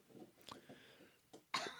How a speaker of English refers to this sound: They make toys that make less noise than this big clanky bony thing she's chewing on. She's chewing on a bone. She just found that on our way in.